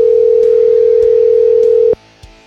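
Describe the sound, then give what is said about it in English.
A single steady electronic ringback tone from an outgoing phone call hums for about two seconds, then cuts off, leaving near silence with a faint click. “I was texting with him a minute ago, and let's see if we can get him on the phone here.”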